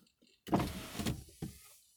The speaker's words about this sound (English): Close my sunroof.